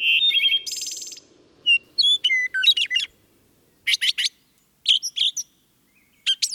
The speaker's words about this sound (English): Wood thrush.